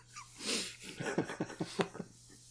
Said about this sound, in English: I gotta blow my nose.